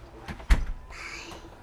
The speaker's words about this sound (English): Here goes the garage door.